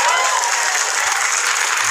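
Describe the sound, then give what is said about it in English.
Steady, dense applause from a studio audience with some cheering mixed in, loud and continuous across the short stretch, with no break or fade. “And the fake audience chair, you see that right there, people?”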